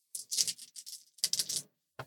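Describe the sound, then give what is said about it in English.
Three small dice clatter and rattle across a hard surface in two quick bursts of rapid clicks, then one last short tap, with no voices. “And it's going to work the same way, except that since you're rolling three dice, you can pick any single one of the three dice or any combination of two.”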